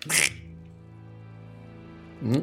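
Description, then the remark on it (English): Two short, nasal duck quacks, one at the start and one at the end, separated by a steady low hum that lingers between them. No one speaks. “You walk straight up to the camp and the scout, the sentry, it was a duck with a small crossbow, pointed at you and said, "Halt!”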